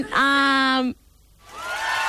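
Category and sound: sound effect, applause sound effect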